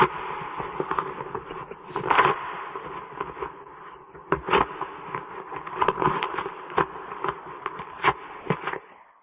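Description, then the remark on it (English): An electric bill being torn up over about nine seconds: a steady dry rustling and crackling, broken by several sharper, louder rips. The sound is muffled and thin, with no talking. “That was someone tearing up an electric bill.”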